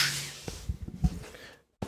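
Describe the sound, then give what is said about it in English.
A series of sharp, dry finger snaps pops right into the microphone, irregular and fairly loud, followed by a brief silence and one last snap. “Do a clap in your mic when you there you go. Or a snap.”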